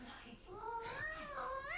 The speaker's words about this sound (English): Oh, my cat completely agrees. Hello, Nibbles. You watching Doctor Who?